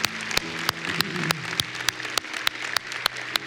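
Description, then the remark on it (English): A large crowd gives God a round of applause after a prayer, applauding steadily, dense clapping filling the space with sharp louder claps popping out at regular intervals throughout. “Hey, can we give God a huge round of applause?”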